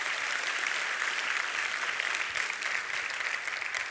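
A crowd applauds steadily, a dense wash of overlapping claps that stays loud and even for the full four seconds, with no voices on top.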